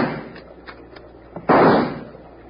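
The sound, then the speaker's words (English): A few faint clicks lead into a single loud rifle shot fired from a boat, a sharp crack followed by a booming tail that fades over about half a second. No one speaks. “If Bill hadn't been shooting from a boat that's sunfishing like a locoed bronc, they might not be alive to duck.”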